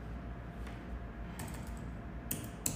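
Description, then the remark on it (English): Computer keyboard typing while the mouse is not working, a few sharp clicks and a quick burst of keystrokes over a low steady hum, with no voices. “The mouse is not working, so I have to literally use the keyboard.”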